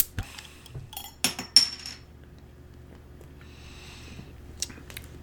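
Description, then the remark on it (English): A beer bottle being opened: a few light glassy clinks and scrapes, a sharp metallic pop of the cap, then a soft, brief fizzing hiss and one last clink, with no talking. “So, anyways, I'm gonna open this thing now.”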